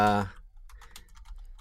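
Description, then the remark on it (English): Rapid, uneven typing on a computer keyboard clatters in a steady run of light key clicks following a brief burst of voice at the start. “While you're clicking and clacking away at the keyboard.”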